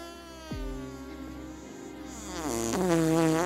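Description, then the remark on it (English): A long, loud, buzzy fart noise close up, its pitch dipping and then rising and wavering as it stretches on for a few seconds, with no talking. “And before she knew it, she farted. Broke wind.”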